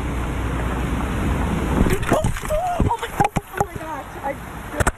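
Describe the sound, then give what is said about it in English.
Steady, loud rush of water gushing from a water main broken in freeze-thaw weather fills the scene, with voices and sharp knocks breaking in over the noise during the second half. “And now we're starting to experience, unfortunately, in freeze thaw, we see this, water main breaks.”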